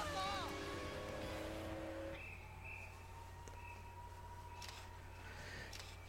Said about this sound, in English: And the car is about to drive itself. Guess that makes a lot of sense.